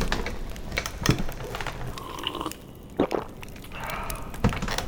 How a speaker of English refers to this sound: The sound of wood creaks as a stout dwarven mage sits up from his chair.